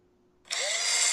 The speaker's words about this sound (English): Electric screwdriver.